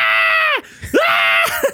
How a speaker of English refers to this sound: It's actually like it's excellent because like this is like pure B horror movie because at this point, as soon as he gets his message, he starts just uncontrollably wailing and screaming.